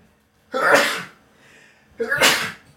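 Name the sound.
sneeze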